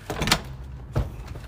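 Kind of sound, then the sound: household object, door being opened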